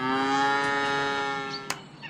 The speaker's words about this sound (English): Yeah, another day. Let's get those cows out of the barn. Wake up and smell the clover, cows.